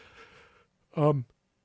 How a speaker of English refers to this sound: Wow, I just yawned on the air. Right in the middle. I am boring myself.